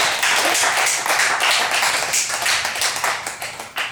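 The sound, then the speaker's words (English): A burst of applause, many hands clapping in a dense, steady patter for several seconds, fairly loud, thinning slightly toward the end with no voices over it. “Round of applause for poo-poo in the jungle kind of thing.”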